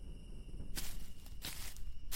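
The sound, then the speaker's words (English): Three slow, crunching footsteps across a campsite land about a second apart, fairly loud, over a steady high insect-like drone and low background rumble. Nobody speaks. “Footsteps crunched across the campsite so loud it sounded like a Neanderthal could have been dragging his club.”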